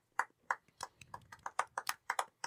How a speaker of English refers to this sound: It was a golf clap. They deserve a louder clap.